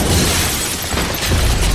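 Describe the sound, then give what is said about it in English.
The door of Snow's home is violently smashed open in a loud, dense crash of splintering wood and debris, forceful, the rumbling roar sustained through the short moment with no voices. “He barely stood before the door of Snow's home was smashed open.”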